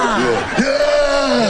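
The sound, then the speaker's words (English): Several people jump out to scare someone, letting out loud, sustained screams together, overlapping yells with a sudden upward pitch swoop partway through, held steady for over a second. “We'll just jump out and scream.”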